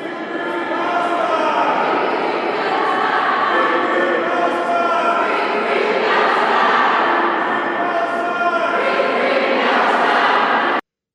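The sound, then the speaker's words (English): A small crowd of protesters on Capitol Hill chants together, many voices blending into a loud, steady roar of overlapping tones that carries on without a break for about eleven seconds. “And here's a little bit of them chanting on Capitol Hill today, just a few hours ago.”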